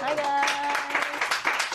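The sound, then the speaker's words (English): Hearty clapping from an audience, a dense, steady patter of many hands, with some voices cheering or calling out over it early on. “Yeah, some hearty clapping.”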